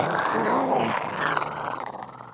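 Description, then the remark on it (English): A voice imitates a beast's roar, one sustained, raspy, growling rumble held for about two seconds, loud, then breaking into rougher pulses as it trails off. “Like a roar of some beast.”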